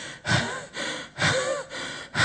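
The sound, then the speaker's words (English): A voice imitates a man's heavy panting after running: several loud, breathy gasps in quick succession, each a rough rush of air with brief pauses between, no words spoken. “And then he came back several minutes later, panting.”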